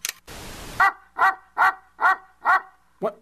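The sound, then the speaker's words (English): A dog with a blue collar barks loudly on a television, five or six sharp barks in a steady, evenly spaced rhythm, following a brief burst of hissing noise at the start. “How did the dog get on the television?”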